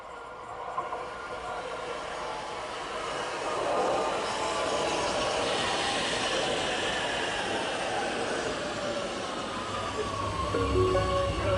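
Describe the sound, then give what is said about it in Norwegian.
An Oslo metro (T-bane) train rumbles steadily along the track just past Veitvet station, its noise swelling after a few seconds, with a whining motor tone that drops in pitch near the end and a low hum as it slows. “Like etter Veitvet stasjon er det et vende- og parkeringsspor for T-banetog.”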